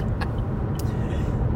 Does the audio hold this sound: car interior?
yes